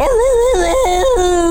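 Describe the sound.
A man lets out a loud, drawn-out vocal roar imitation, a sustained tonal cry whose pitch wavers and steps downward in a few jumps, with no other talking.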